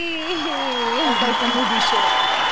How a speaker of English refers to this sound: Yes, applause to me.